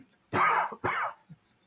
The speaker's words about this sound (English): Ooh, bless me. With a cough.